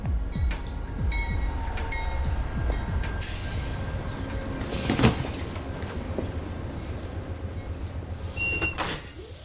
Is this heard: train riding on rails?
yes